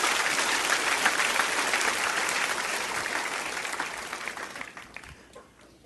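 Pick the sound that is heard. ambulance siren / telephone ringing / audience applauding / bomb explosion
audience applauding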